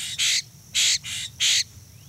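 Three loud, harsh Florida scrub jay calls, each a raspy burst evenly spaced about half a second apart, with quiet background between them.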